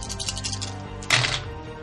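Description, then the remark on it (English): Dice clatter on a hard table: a quick run of light rattling clicks, then a louder knock as they land and settle, with no talking. “So, you roll those.”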